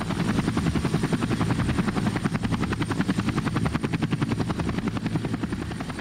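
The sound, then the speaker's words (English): A helicopter passes overhead, its rotor blades thumping in a fast, steady rhythm over a low engine roar, loud and constant for the whole stretch with no voices. “At that instant, I repeat, the clouds above our house opened wide and let forth a helicopter-like Apollo driving his chariot across mythological skies.”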